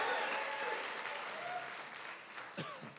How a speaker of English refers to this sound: Give the Lord another great hand clap. You can be seated.